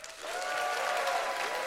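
Audience applause at a debate swells quickly and holds steady, a dense wash of clapping hands from a sizable crowd voting that the Republican primary is over and Trump will win, moderately loud with no voices standing out.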